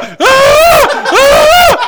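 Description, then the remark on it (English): A man vocally imitates screaming with two loud, strained yells in quick succession, each rising then falling in pitch, raw with a short breath between them. “And he wakes up and just starts screaming.”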